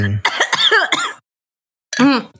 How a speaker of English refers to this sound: Wow, that was not ASMR. That was wake up, motherfucker. I just coughed in your ear. I'm sorry.